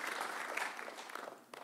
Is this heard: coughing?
no